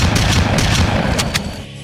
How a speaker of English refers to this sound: Give me some gunshots